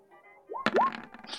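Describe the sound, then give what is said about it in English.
A bathroom door swings shut: a short rising creak, then a single dull thunk, followed by another quick squeak and a soft, steady hiss of water beginning to run, trailing off. No voices. “you hear the sound of your bathroom door closing and water beginning to run.”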